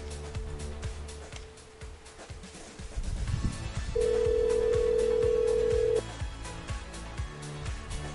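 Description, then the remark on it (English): An outgoing call's ringback tone: one loud, steady two-second ring tone, preceded by a fainter earlier ring, with busy background noise throughout and no talking. “I need to get some people to answer the phone here at the plaza.”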